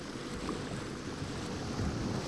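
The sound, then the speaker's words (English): Warm ocean water washes over sand in a steady, continuous rush, a moderately loud surf hiss with no distinct breaks between waves and no voices. “Listen to the rhythm waves flow over the sand.”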